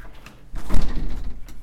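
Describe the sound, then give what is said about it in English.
A front door swings open for a visitor, a pest control technician, with a brief low rumble and a soft thud in the middle, then fades into quiet room noise. No one speaks. “there's somebody at my door. Let's see who this is.”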